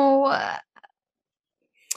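A short vocal sound and a rushing noise give way to a few quick, light clicks of dice tumbling on a table, then a final sharp clack after a pause.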